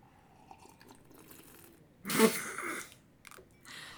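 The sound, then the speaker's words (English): A single deliberately loud, slurping sip of a drink, taken to check the audio, bursts out for under a second amid near silence, followed by a few faint mouth and rustling noises. “I took a loud sip just to make sure that was audio.”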